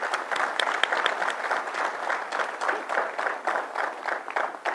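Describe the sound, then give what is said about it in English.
A crowd applauds for David, the youngest and first Black elected county executive, many hands clapping in a dense, continuous patter that holds at an even loudness throughout, with no voices rising above it. “You can clap, come on, give it up for him.”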